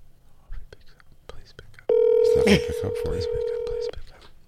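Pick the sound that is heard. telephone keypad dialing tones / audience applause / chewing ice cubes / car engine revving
telephone keypad dialing tones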